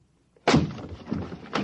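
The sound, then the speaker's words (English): A door locked from the inside is forced open with a loud crash, followed by a rattling, splintering clatter and a second heavy thud near the end. No one speaks. “We'll have to break in. It's locked from the inside.”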